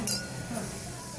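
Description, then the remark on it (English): Two glasses, a very full pint glass and a half-full glass, clink together in a toast near the start, a short bright chime followed by a fainter second touch, with quiet room noise underneath. “There's like this pause there as we both kind of went, is that a decent clunk or not? But it's because I think your pint glass is so full.”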